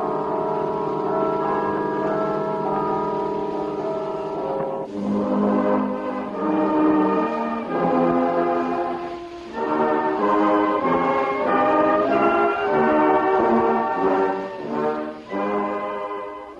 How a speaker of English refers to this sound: In Ottawa on July 1st, 1927, Canadians heard the first network broadcast. The bells in the Peace Tower were heard for the first time from coast to coast.